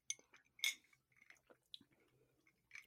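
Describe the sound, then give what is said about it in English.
Drinking glasses clink together in a toast, one bright ringing chime, followed by a few softer taps and rattles of glassware and ice. No one speaks. “So cheers. Cheers.”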